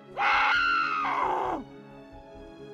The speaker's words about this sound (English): She's got to have some sort of pillow on a chair or something and just screams into a pillow.